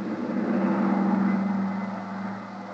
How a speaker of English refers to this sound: drove us to the airport and then, much to my surprise, took over as pilot of the huge private two-engine plane that was waiting for us. Within a few minutes, we were airborne and on our way.